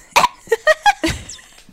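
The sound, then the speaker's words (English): A person imitates a Tasmanian tiger's call with a quick run of five short, sharp, barking yaps and coughing sounds, the last one rougher and breathier, with no other noise. “It had like a bark, cough, yap hybrid sound where it would kind of like make this like I can't do it.”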